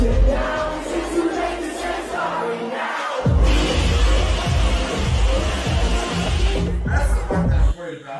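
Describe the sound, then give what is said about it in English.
A large concert crowd in Israel roars and chants, with heavy rhythmic low thumps from people jumping and a pounding beat, loud and dense throughout, swelling after a few seconds before briefly cutting off near the end. “We have the crowd bumping, jumping.”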